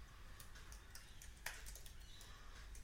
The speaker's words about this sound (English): Yeah, you get to hear them type now.